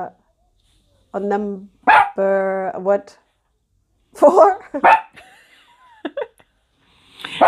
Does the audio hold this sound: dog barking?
yes